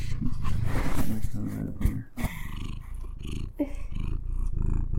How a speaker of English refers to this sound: Our cat just joined the couch. Cream puff. Her purring may be coming through.